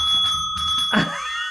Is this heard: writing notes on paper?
no